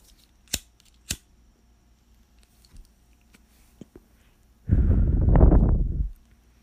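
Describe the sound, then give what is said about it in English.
A lighter is flicked twice with sharp, bright clicks, followed by a few faint ticks and then a loud, rough rushing burst lasting over a second as it catches to light up a smoke. No one speaks. “We're going to spark up first, and then we'll start the conversation.”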